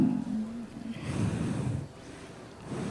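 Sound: heavy breathing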